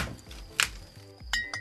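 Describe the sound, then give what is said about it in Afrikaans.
Glass beer bottles clink together in a few sharp, bright knocks: one strong chink near the start and two lighter taps later, with a faint low rumble underneath and no talking. “mag ek ook 'n bier kry asseblief? Ek het twee saamgebring in die yskas met die groen etiket.”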